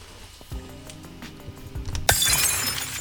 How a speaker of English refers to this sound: Glass that shattered made you physically jump, and you clutched onto your little basket.